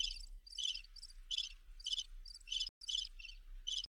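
Crickets chirp in a steady, repeating pulse of bright, high-pitched trills, clear, with a brief gap near the end before the chirping resumes. No one speaks.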